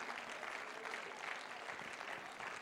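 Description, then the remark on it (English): A crowd claps hands steadily throughout in praise to the Lord, a dense, continuous patter of many people applauding together, with no voices standing out. “Come on, clap your hands, and let's give praise to the Lord right now.”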